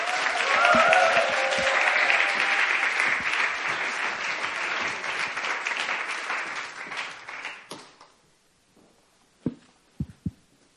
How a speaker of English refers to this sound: Let's give up a round of applause.